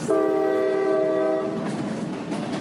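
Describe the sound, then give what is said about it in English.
A train sounds a loud, sustained multi-tone horn for about a second and a half, then the steady rumble of the train rolling along the rails continues, standing for Edmund Hillary's long daily train ride to school in New Zealand. No one speaks. “Every day he got on a train and took it a long way to school.”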